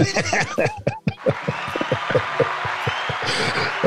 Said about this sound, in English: Thank you. Clap yourself, big time. Well, I was just joining the crew because they're all like, you know, I see them. Yeah, let's clap.